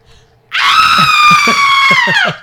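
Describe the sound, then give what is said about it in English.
A man lets out one loud, sustained scream lasting nearly two seconds, piercing, holding a steady high pitch before cutting off abruptly, with no talking. “You're good at screaming.”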